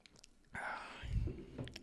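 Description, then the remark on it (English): A quiet sip of tea: a soft airy slurp followed by a low gulp and faint mouth sounds, with no talking. “Hold on, I need to take a sip of tea here.”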